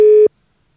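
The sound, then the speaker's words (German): A single short telephone line tone before a call, a steady mid-pitched beep lasting about a quarter second, clear, then silence with no voices. “Also, da ist das Telefon”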